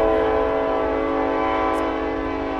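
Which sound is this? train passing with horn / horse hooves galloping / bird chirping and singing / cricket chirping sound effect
train passing with horn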